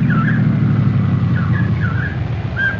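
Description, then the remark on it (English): A state policeman's car engine rumbles steadily, with a few short squealing chirps, like brakes, as the vehicle rolls in and slows. No one speaks. “Oh, hey, I hear a car coming.”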